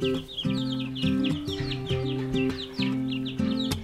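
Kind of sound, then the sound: animal, chickens clucking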